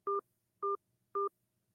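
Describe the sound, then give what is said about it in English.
Three short telephone keypad tones, evenly spaced about half a second apart, each a steady two-pitch beep, loud and clear against near silence, as the digits of a 5-digit zip code are punched in on an automated Planned Parenthood phone line. “To help us connect you to the Planned Parenthood Center in your area, please enter a 5-digit zip code for the area you are interested in. Please enter your zip code now.”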